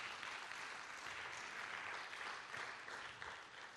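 A church audience claps for the Lord during a sermon, a steady, dense, sustained wash of applause that holds at an even loudness for several seconds, with no voices cutting through.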